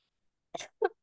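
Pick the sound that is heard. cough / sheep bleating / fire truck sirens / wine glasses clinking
cough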